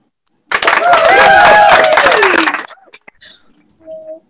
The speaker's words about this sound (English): Y'all better start cheering or something so it's not awkward.